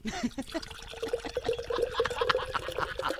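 Beer pours steadily into an official Hall of Fame beer mug, a gurgling, splashing stream whose pitch rises as the vessel fills, lasting a few seconds.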